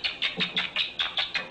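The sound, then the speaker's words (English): Rats chirping during rough-and-tumble play: about eight quick, high-pitched chirps repeat in a steady, rapid rhythm, fairly loud and alone with no talking. “They tumble, they engage in roughhouse play, which produces a tickling effect, says Jaak Pankseep, and lots of chirping.”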